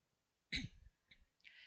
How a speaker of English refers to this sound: Let me clear my throat.